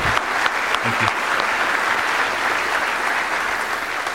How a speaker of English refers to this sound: And so today's service, when you got veterans and you got an alumni band. Oh, I love it so much. So please give them another round of applause, please.